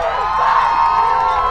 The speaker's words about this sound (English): Very nice crowd tonight. I like it. And that was the home crowd of the NCT. Cheering on their defense.